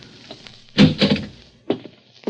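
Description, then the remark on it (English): Metallic clicks and rattles, then a few solid knocks and thunks as the locked door of room 209 is unlocked with keys and pushed open, with a short pause before a final clunk. “It's locked. I got some keys. It's an easy lock. Here we go, kid.”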